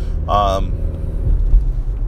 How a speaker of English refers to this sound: whoa, what's going on? Why do you need three cop cars for one chick? That's not cool.